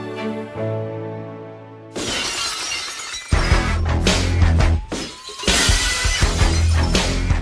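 A brief ringing tone gives way to a loud crash of shattering glass, followed by a long noisy wash of breaking shards over a heavy, pounding low rhythm. No one speaks.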